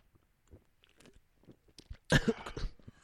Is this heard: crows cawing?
no